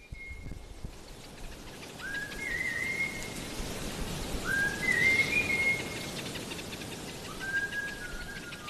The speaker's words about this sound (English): And these can vary from beautiful whistle melodies, for example, used by the Hadza honey hunters of northern Tanzania.